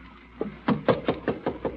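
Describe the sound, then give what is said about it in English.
Someone raps on a wooden door about seven times in a quick, steady rhythm, starting softly and then landing firm, hollow knocks. There is no talking. “I'll be right next to you behind the door. I'll be listening and watching. Now, open it.”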